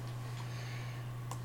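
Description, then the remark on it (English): A few soft, scattered computer clicks, spaced irregularly, sit over a steady low electrical hum, with no one speaking. “I quit clicking on things.”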